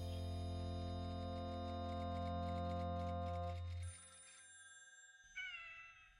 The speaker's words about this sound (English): Typewriter, phone ring, meow. That is the whole essence of this podcast.